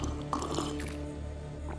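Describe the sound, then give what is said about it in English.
Water pours and trickles briefly from a bottle, with soft liquid splashes over a steady low hum, then a faint gulp of drinking. “That bottle of water is... What's wrong, Mrs. Stanford? Oh, it's bitter.”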